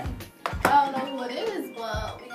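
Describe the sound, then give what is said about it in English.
A phone rings with an incoming call: a bright electronic ringtone with shifting melodic tones and a few sharp percussive hits, playing steadily for a couple of seconds. “Oh, somebody wants to call me.”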